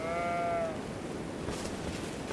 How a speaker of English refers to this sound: That's a lot of sheep.